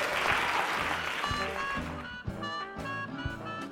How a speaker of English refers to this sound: Could you guys please give Stephen Moyer a round of applause?